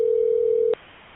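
A steady, fairly loud telephone line tone hums alone for under a second, then cuts off abruptly with a click, leaving only faint line hiss.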